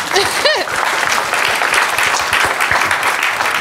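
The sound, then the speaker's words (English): An audience at an event applauds steadily as a speaker is introduced, dense overlapping clapping at a fairly loud level, with a brief vocal sound or whoop near the start. “Then, yes, clap.”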